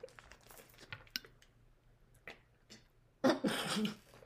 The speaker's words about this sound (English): choking on the water